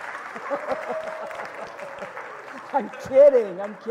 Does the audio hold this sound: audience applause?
yes